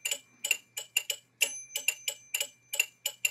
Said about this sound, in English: I think how it's useful is to leave the bell in the one position. So like we could do a pretty clear 5 against 7 and really hear every bell is the start of the pattern.